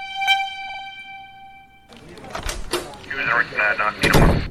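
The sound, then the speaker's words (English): A steady tonal hum gives way to a door being flung open without a knock, with a few sharp, loud thuds and clatters, and a muffled voice briefly under the commotion. “By all means, please come right in and don't bother to knock.”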